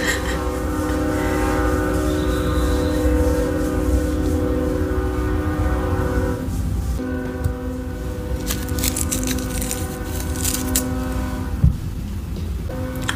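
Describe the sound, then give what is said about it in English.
A train's horn blares in a long, steady chord for several seconds, then gives way to the loud rumble and rattling clatter of the train rolling past. “It's a train.”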